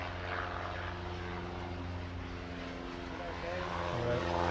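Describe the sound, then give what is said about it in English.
A small propeller plane drones overhead with a steady, buzzing engine hum, fairly loud and constant, its pitch dipping slightly near the end as it passes by. “Oh, hang on, plane coming.”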